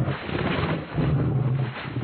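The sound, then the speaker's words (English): A pig shrieks and grunts harshly while a wild dog attacks it, a loud, continuous, rough animal noise with a low droning tone, lasting about two seconds with no talking. “That's being attacked by a wild dog.”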